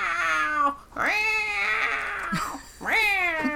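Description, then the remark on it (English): A person imitates a cat with three loud, drawn-out meows, each rising and falling in pitch with short gaps between them, and no other talking. “Did I call you with my meowing?”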